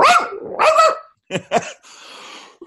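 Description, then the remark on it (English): A person imitates their female dog's bark, like a small dog's but loud and high-pitched: two loud, high yaps, then a couple of shorter clipped ones, followed by a breathy exhale. “She always barks and her bark is kind of like the little dog bark, but it's like loud and high pitched.”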